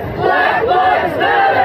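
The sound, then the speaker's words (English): A protest crowd chants "Black Lives Matter" in unison in the street while flags burn, loud, rhythmic voices shouting together in a steady repeated cadence that rises and falls, filling the whole stretch. “While the flags burned, protesters chanted, "Black Lives Matter."”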